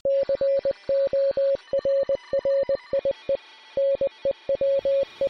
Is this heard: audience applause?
no